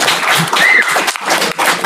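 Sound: audience applause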